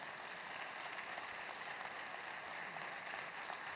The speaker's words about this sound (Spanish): Que aunque Dios quiere sacarlos de las escuelas, si lo va a aplaudir, hágalo con toda su fuerza.